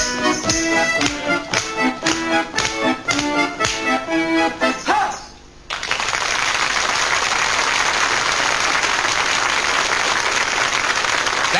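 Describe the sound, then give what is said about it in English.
A few seconds of bright, rhythmic music end with a brief pause, then a studio audience on a 1969 television talent show breaks into loud, steady clapping for an act, measured by a clapometer, that continues without letup. “And then the one with the highest gets the highest clap.”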